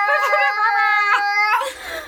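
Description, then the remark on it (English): A voice imitates an air horn: one loud, sustained, nasal blare, steady in pitch for about a second and a half, then breaking off into a breathy trail. “That was the best air horn I've ever heard.”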